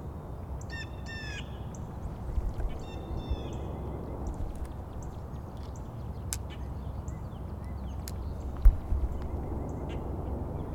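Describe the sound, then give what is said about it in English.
Birdsong from an American Robin, Blue Jay and Northern Cardinal at a botanical garden arboretum: two bursts of harsh, stacked, jay-like calls early on, then scattered sharp chips and clicks over a steady rushing background, with no talking. “American Robin, Blue Jay, Northern Cardinal.”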